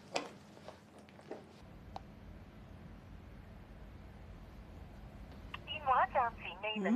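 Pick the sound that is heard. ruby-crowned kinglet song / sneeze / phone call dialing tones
phone call dialing tones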